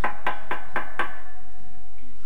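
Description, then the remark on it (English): Five quick, evenly spaced, sharp knocks on a wooden house door, followed by a brief quiet ringing tail with no voices. “So they knock.”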